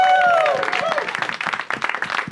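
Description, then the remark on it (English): An audience at the Dynasty Typewriter venue breaks into loud, dense applause, with a few rising whoops or whistles at the start, the clapping continuing steadily throughout. “Let's hear it for Dynasty Typewriter.”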